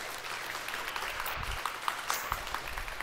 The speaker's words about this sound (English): So let's give these guys a little round of applause for that. Thank you, guys.